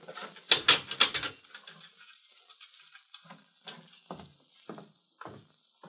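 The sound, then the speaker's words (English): A heavy metal jail cell door clangs shut with a burst of rattling impacts, followed by a series of sharper, spaced clicks and clanks as a sheriff works the lock, fairly loud. “I got to lock you in while you talk to the prisoner,”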